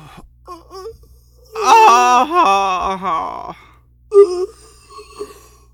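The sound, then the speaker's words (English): A man moans in pain: a couple of short, soft murmurs, then a long, wavering, drawn-out moan, followed by a few brief, quieter groans. No speech. “Rushing to Donna's aid, he heard the man making slight moans.”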